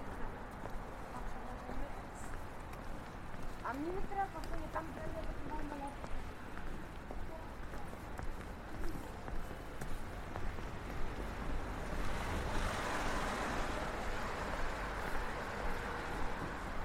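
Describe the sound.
Steady, loud roar of city traffic at the end of Cavendish Place, by Langham Place, with Oxford Circus in view: a dense low rumble that swells as a vehicle passes toward the end, with brief tonal engine whines and indistinct voices mixed in.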